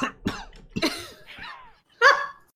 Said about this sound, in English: I mean, if we're gonna make him cough, we might as well get it all done.